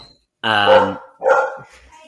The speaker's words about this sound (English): Featuring Jillian's dog.